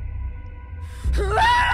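After about a second of low, steady hum, a sudden heartbroken scream erupts, a single loud cry with a strained, rising pitch that holds to the end, as a person hurls a mirror back into a basement.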